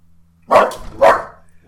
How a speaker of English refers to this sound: Two, there are other dogs in this neighborhood. You can't just bark on them when you see them on the window.